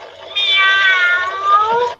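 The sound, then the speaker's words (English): A single drawn-out cat meow from an animal-sound toy that landed on cat, lasting nearly two seconds with a slightly electronic, harmonic tone, loud with no talking over it. “Oh, it landed on cat. Of course it landed on cat. Of course. Listen to the cat.”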